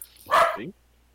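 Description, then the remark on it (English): A person imitates a dog with one short, loud bark up close, ending in a quick falling whine, then silence. “Turns Leyland into a dog for his impertinence.”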